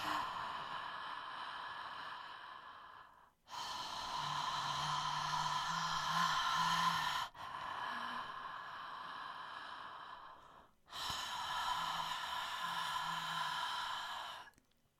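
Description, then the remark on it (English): Slow, deep circular breathing in and out through the mouth in time with music: long airy inhales and exhales flowing into one another with barely a pause, four steady breaths over a soft sustained drone. “Just feel your breath, feel that energy of that circular waves, breathing in time with the music, inhaling and exhaling, receiving and giving, receiving and giving.”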